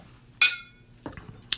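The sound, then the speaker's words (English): Glasses of Red Lion cocktail clink together in a toast: one bright, ringing chime that fades quickly, followed by a couple of softer, shorter glassy knocks. No one speaks. “The Red Lion, cheers.”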